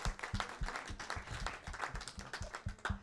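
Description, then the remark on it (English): An audience claps for God in a steady, even rhythm, many hands striking in unison roughly every quarter second, fairly loud and sustained with no voices over it. “Let's clap for God.”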